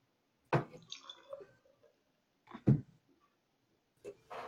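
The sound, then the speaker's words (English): A sour drink is poured from a can into a glass, filling only half the glass, in a few short, splashy gurgling bursts with brief pauses between, fairly quiet, with no talking. “Yeah, that pour was also bad. It's hard to pour nice when you're only pouring half glasses.”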